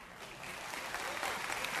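An audience claps together in a steady, dense wash of many hands, holding an even loudness for just under two seconds with no voices standing out.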